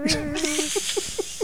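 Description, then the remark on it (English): A person's voice mimics a yowling cat, starting with a drawn-out wavering wail and then breaking into a quick series of short, squeaky mewing chirps, loud. “That'd be funny as hell if the mic was recording your cat fucking it.”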